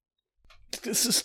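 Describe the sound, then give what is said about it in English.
A single loud sneeze by a woman onto a man's greatcoat: a brief quiet intake of breath, then a sharp, hissy, voiced burst that cuts off abruptly. “Because, you know, she sneezed all over your great coat.”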